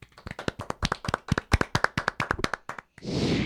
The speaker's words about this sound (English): Now for the final applause.